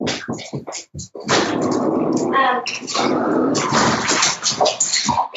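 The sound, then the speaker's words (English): Dogs bark and snarl at each other in a loud, chaotic scuffle: a few sharp, choppy barks at first, then a sustained stretch of overlapping growls and yelps. “Sorry, my dogs were yelling at each other.”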